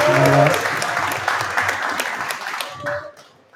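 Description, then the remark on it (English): A crowd claps steadily for a few seconds in recognition of a team player, a dense patter of many hands with a brief shout near the start, then the applause thins out and fades toward the end. “So clap it up again.”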